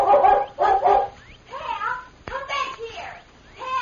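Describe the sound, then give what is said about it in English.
A golden-brown collie with a white chest barks in a rapid series of sharp, fairly loud barks with yelping, whiny edges, about six or seven bursts in quick succession. “As soon as they heard the dog barking, the Lone Ranger and Tonto leaped to their feet.”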